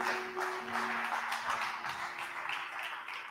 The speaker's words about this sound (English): Come on, give God one more hand clap.